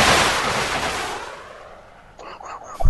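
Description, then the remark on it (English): A rocket launcher fires with a loud, broad whooshing roar that fades away over a second or so, followed by faint murmuring voices and a sudden sharp noise at the end. “That was a rocket launcher.”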